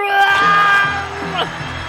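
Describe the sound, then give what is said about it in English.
Strange, drawn-out screams ring out loudly and continuously in a movie scene where a gang shoots everybody, several voices layered in a sustained, piercing wail with a brief pitch swoop near the end. “And we hear those weird screams happen.”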